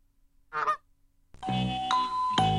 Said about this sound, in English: I like how you threw the random honks in there.